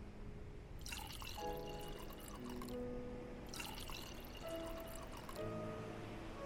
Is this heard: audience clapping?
no